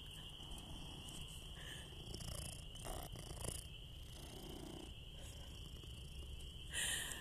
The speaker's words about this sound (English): Except my cat keeps following me, and all I can hear is him purring.